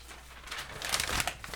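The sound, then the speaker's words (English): Paper crinkles and rustles as a large printed sheet, about 8x13 inches, is unfurled, with a quiet start building to louder crackling bursts over a second and a half, with no talking. “I'm just trying to unfurl it here.”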